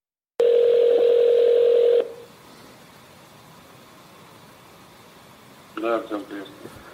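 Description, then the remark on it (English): A single long, steady ringback tone buzzes loudly over a telephone line during a call to a member of an assassination squad, then cuts off to faint line hiss before a voice briefly answers at the end. “He has managed to investigate his own poisoning and potential assassination, and they even managed to get members of the assassination squad to pick up the phone and to more or less admit that they were involved.”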